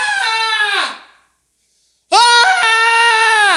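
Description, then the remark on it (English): A preacher lets out two long, loud, strained screams separated by a brief silence, imitating the anguished wailing of a tormented man during a sermon, each cry harsh and sustained before trailing off. “And the Bible says, and he would be screaming and cutting himself.”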